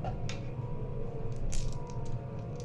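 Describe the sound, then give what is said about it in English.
Dice clatter down through a dice tower in a quick series of light, hard clicks and taps over a steady low background hum with no talking. “You don't have to use the dice tower, but it's so much fun.”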